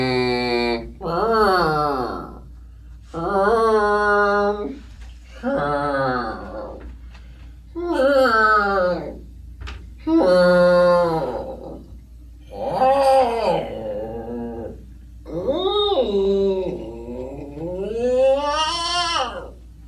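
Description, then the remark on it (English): A solo voice runs through vocal warm-up exercises before a recording session, sliding up and down in pitch in about nine loud bursts with short gaps, some sounding like yowling meows. “I just want to do some vocal warm-ups before we start recording.”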